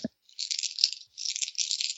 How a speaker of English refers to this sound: Or chips, or cellophane. Or is playing with dice in their hands or something. That would be me. Sorry.